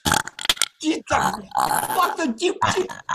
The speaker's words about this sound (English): There's a closed door and your burps are annoying me from on the other side.